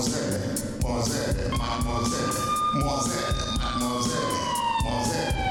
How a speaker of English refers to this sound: Siren's so fucking loud, man.